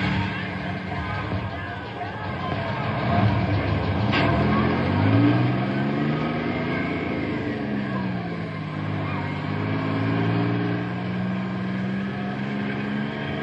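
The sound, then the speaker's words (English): A large vehicle's engine revs and shifts through gears as a bus carrying a group of boys pulls off, its rumbling drone rising and falling steadily, with faint crowd noise in the background. “There go the little darlings, bless their hearts.”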